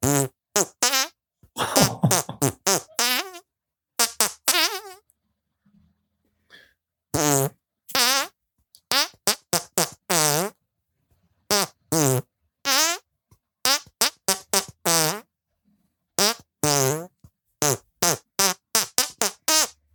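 A rapid string of loud fart noises bursts out in pitched runs, rising and falling as if tracing a tune, with short pauses between phrases and no talking.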